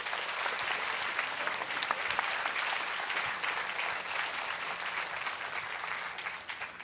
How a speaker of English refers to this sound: Can you also give yourselves a round of applause for the wonderful questions and for being such a fantastic audience?